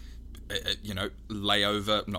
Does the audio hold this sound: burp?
yes